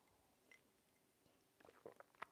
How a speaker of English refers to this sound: It's called the simultaneous sip. And if you haven't tried it, oh, I feel sorry for you, because it's awesome. And it's going to happen right now. Go.